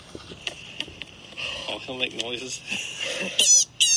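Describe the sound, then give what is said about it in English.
A rabbit screaming in an online video, in a string of shrill, harsh squeals that come in quick bursts, growing louder and more piercing toward the end over a faint, noisy background. “We have to Google rabbit screaming.”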